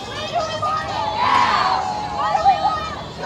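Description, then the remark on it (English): A crowd rallying in support of abortion rights in front of the Lexington courthouse in Kentucky in the evening, at a gathering hosted by Planned Parenthood Advocates Alliance: many voices shouting and cheering together in a steady, loud wash of babble, with a few raised voices rising above the noise before it dips and swells again. “The same evening, crowds gathered in front of the Lexington courthouse to rally in support of abortion rights.”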